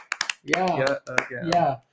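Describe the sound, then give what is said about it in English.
Three quick, sharp hand claps ring out as applause for Simone being named the top pick, followed by voices that whoop and chatter over a few more scattered claps. “Applause. Go ahead. Clap.”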